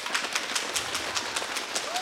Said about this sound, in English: In youth group where, okay, this section go like this. Stomp your feet. Okay. Half of this section, join them. Okay. This section, patter on your... Okay. This section, snap. Louder.